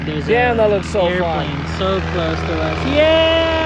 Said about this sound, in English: There's an airplane so close to us. Yeah! So cool!